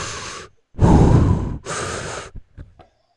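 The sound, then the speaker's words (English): Someone imitates Darth Vader's heavy, rasping mechanical breathing: three long hissing breaths, the middle one loudest, followed by a few faint clicks. “Yeah, no, this is what the, this was Darth Vader breathing.”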